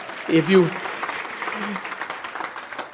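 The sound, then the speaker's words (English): A crowd claps its hands in a dense, steady patter that runs the whole time, with a brief raised voice calling out over the clapping near the start. “Somebody clap your hands if you agree.”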